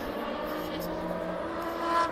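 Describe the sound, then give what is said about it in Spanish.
A race car engine roars past at a circuit, no more than 25 metres away, with a steady, harmonic-rich drone that holds at a strong level and swells slightly near the end as it passes. “Ahora mismo pues no estaré a más de 25 metros del paso del coche.”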